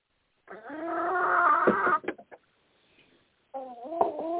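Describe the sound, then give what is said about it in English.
A chicken crows in a long, loud call, followed by a few short clucks, a pause, then another burst of crowing. Clear, with no talking. “Was that a chicken?”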